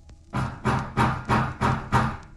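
Six heavy, evenly spaced bangs on a door, loud, each a broad booming thud following quickly in a steady pounding rhythm with no voices.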